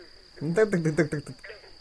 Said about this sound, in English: That sounds like one of them crickets.